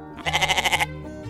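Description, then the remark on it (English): A goat bleats loudly with a rapid trembling vibrato, held for about half a second before fading into a lower, steady background tone. “5 years as a milking goat, kept pregnant to produce milk for humans, and another 5 as an absolute grindcore legend.”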